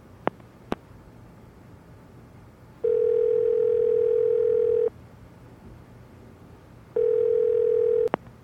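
A few sharp clicks as someone places a phone call, then a phone's ringback tone: two long, steady, buzzy beeps of about two seconds each, separated by a pause, with no one speaking.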